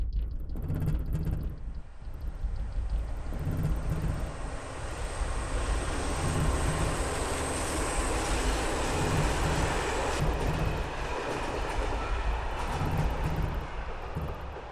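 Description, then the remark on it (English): A loud, continuous rumbling roar of a passing train on the railway by a main station, a steady heavy wash of noise with a low hum that holds throughout, no voices. “Is there a train station nearby?”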